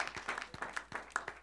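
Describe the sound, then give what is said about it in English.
An audience claps together for the Lord Jesus, a patter of sharp, slightly uneven hand claps in quick succession, fairly soft overall with no voices over it. “Clap for the Lord Jesus.”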